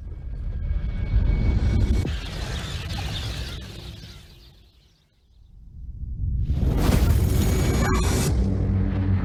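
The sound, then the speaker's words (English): A deep rumbling roar fades almost to silence. Then a massive explosion erupts as a meteor fragment hits Central Florida, becoming a sustained, crackling blast that keeps thundering to the end. “Wait, where's the explosion?”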